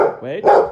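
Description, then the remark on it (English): A dog named Benjamin Mathers lets out a quick run of loud, agitated barks, three harsh yaps in under a second, the middle one rising and bending in pitch like a growly whine. “That was young Benjamin Mathers. And as you can hear, a little bit belligerent.”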